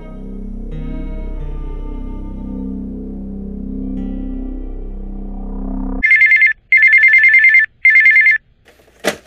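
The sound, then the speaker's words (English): A low, droning musical bed gives way to a telephone ringing: three loud electronic trilling bursts with short gaps between them, with no one speaking. “That's why you picked up the phone, is it?”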